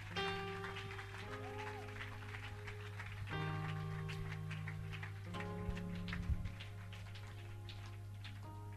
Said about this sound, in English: Clap your hands, please.